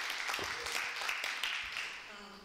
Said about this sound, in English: let's welcome her with a round of applause, and we're gonna hear from her today.